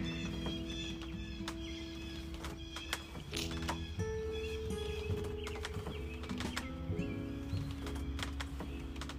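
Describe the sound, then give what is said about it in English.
Three large birds call loudly and almost nonstop outdoors in the morning, a tangle of honking, whinny-like cries overlapping from several directions, with no one speaking. “Very vocal this morning. And I thank you for Baja Big Birds that are back.”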